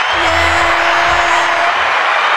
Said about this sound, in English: So these are two of Bourbon Heat's finest bartenders. And let's give them an applause. A round of applause.